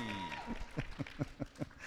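A voice trails off, then a short run of sharp, evenly spaced claps follows, about five per second, moderately loud with no clear cheering, as the audience greets a man who arrived in the front row in a Tom Baker costume.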